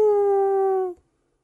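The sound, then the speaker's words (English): A dog lets out one loud howl, a steady mournful tone that sags slightly in pitch for about a second before cutting off into silence. “I howled and was surprised. I did not know I could howl. It was a truly mournful sound.”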